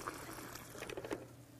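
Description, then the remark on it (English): Water is poured into a cup with a tea bag to make tea, in a short, quiet stream, splashing and trickling for about a second over a low background hum, with no voices. “That was water I put in there, right? It's water. And I put a tea bag in there.”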